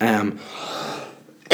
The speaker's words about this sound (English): pardon me again for coughing. Just so dry up in this house.